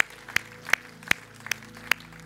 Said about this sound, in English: Can we give the Lord a hand clap of praise before we leave today?